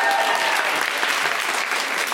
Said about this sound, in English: Now get a clap for me, man.